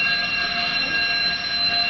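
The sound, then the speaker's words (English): A fire alarm sounds continuously during a drill, a loud, steady, high-pitched electronic tone that holds without pause or break, with no voices over it. “Fire drill.”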